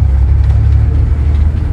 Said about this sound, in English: If you saw my live yesterday, you saw us leaving on two tour buses, one of which I'm on right now.